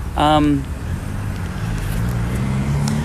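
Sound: loud car passing by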